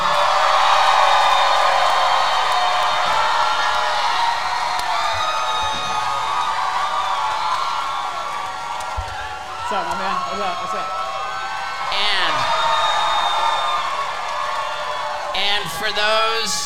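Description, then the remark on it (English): A live theater audience on a cruise ship in the Caribbean cheers and whoops in a loud, continuous roar that dips briefly midway as Sal Vulcano is introduced, with a man's voice greeting someone over the crowd noise. “You're hearing the sound of a live theater audience on the Wild Ride podcast for the very first time.”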